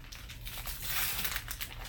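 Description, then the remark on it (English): Paper crinkles and crumples continuously, a busy rustling texture with sharp little crackles, as gift wrapping paper is torn open and pulled away by hand. “So I got them a joint gift. Ooh. So they have to open it together.”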